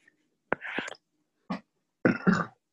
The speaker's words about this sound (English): Excuse me. Sorry, also the burp. I mean, there's so much air going in. It just comes out in burps.